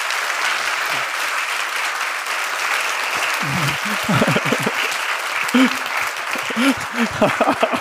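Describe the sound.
Sustained applause from an audience, a dense, steady wash of clapping throughout, with murmuring voices and a few speaking voices rising over it in the second half.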